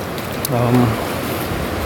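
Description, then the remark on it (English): Steady splashing and sloshing of water as someone wades through incoming high tide water, a continuous rushing wash with a brief low tonal hum rising partway through. “High tide, high tide. Water's really coming in, and I'm sloshing through the water.”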